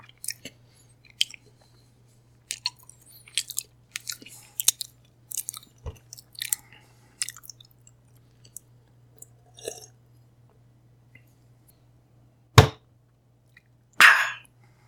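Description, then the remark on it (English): Wet, clicky chewing sounds in irregular bursts, thin and slightly tinny, coming through a telephone receiver over a low steady hum, followed by two sharp louder clunks as the receiver is slammed down near the end. “There's a sound from the receiver, like chewing.”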